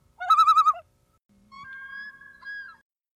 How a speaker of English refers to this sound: There are few sounds that conjure up a feeling of profound wilderness quite like the yodel and cry of a lone loon in the pitch black of a summer night.